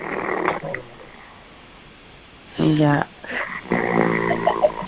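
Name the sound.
person snoring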